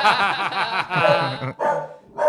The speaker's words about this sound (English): that was a big enough laugh to make the dog bark.